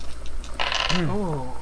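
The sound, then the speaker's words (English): A short, bright rattle of many dice tumbling onto a table during a tabletop role-playing game, lasting a fraction of a second, followed right away by someone talking. “That's a lot of dice.”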